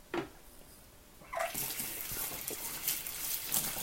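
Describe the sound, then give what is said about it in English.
A tap turns on and water streams steadily into a sink, a broad hissing splash with small shifts as hands move under the flow, after a brief quiet clunk at the start. “I'm just washing my hands so that I can dry my hands so that I can press pause on this whole recording.”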